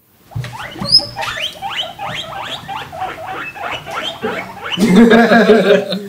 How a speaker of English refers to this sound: And then all they do is squeak. We'll insert a little squeak noise right here.